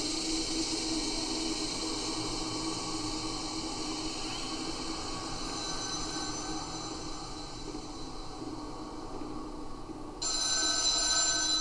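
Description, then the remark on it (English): A telephone rings steadily, a continuous metallic bell tone over a low rumbling background, with no one speaking; the ringing grows brighter and louder in the final second or so. “There's a phone ringing somewhere.”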